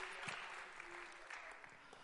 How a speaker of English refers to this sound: Give the Lord a hand clap of praise as you're seated tonight.